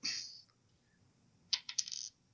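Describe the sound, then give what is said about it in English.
Dice are rolled onto a table: a sharp rattle at the start, a pause, then a quick burst of several clicking bounces settling down, fairly crisp, with no talking; they come up three. “Roll those dice, Pete.”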